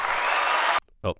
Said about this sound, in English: Sorry. They're clapping at me.